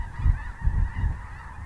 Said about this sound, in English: The prairie grass of North Dakota can look like it's waving hello, but even the geese just fly right over.